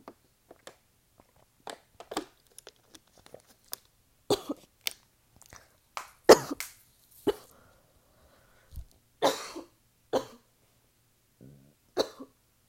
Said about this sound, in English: You ever cough so much that you throw up? Happened to me.